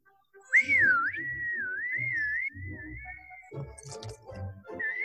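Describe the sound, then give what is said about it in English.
A clear, sustained whistled melody, wavering and sliding in pitch, plays over a quieter song in the background, with the music continuing after the whistling fades. “but listen through the whistling to the actual song in the background.”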